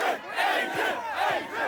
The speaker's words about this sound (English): The beach, you just could not even go onto the beach, like too many people. Right around the pier. It just looked like a concert with no stage. It was so loud, everybody was yelling. Everybody's yelling,